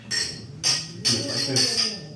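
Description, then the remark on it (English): Four bright glass clinks ring out in quick succession, each with a short shimmering ring-out, as glasses of beer tap together in a New Year toast over low background chatter. “Clink, clink, clink.”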